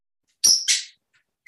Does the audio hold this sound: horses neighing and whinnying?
no